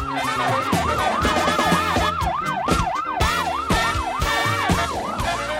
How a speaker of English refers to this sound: And those sirens took me a little by surprise. Because Driving in the car. I was not speeding. And I was like, why could I be? Oh, no, that's on the radio.